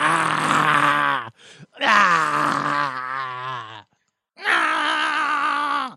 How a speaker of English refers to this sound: I'm sorry. I don't know why I'm growling at you.